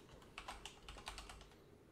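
Rapid clicking of keys on a computer keyboard, a quick irregular burst of taps, moderately quiet with no voices.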